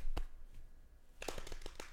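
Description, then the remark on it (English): Hamboning: hands slap against the body, one sharp smack, a pause, then a quick run of six or seven crisp slaps in an uneven rhythm, with no talking. “Quit slapping. 1-800. I'm ham-boning.”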